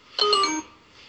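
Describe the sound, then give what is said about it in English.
A short phone notification alert from a parents' "stalker" app chimes once, a bright multi-tone electronic ding lasting under half a second with a brief ringing tail, sounding alone without any talking. “My stalker app going off.”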